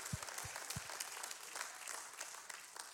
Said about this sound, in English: See how low the claps are getting?